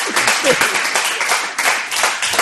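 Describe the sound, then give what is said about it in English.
An audience bursts into sustained applause, voting that a claim about a person's thoughts controlling a mouse's movements is the fiction, many hands clapping densely and steadily for a couple of seconds, fairly loud, with a faint murmur of voices mixed in. “Applaud if you think that's the fiction.”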